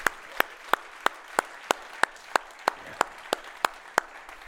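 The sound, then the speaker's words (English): Sparse audience clapping: about a dozen sharp, crisp claps land in a steady, even rhythm over a faint murmur of background noise, with no one speaking. “The ones that clapped were the ones that he paid on the way in.”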